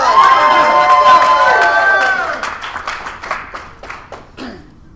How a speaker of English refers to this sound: Applause!